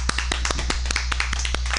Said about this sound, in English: All right, everyone, let's have a nice round of applause for Mr. SF Leather 2016